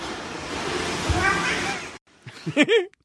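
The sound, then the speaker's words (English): A cat, caught on camera as it turns a corner, looks up and lets out a drawn-out, sing-song meow with rising and falling pitch, almost like a spoken two-syllable greeting, right after a stretch of steady rushing noise. “hearing a cat talk like a Southern lady”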